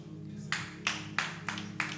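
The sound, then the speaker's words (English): A person claps five times in a loose, slightly uneven rhythm, each clap sharp and bright with a short ringing tail, over a steady low background hum. “Only the person who is clapping understands”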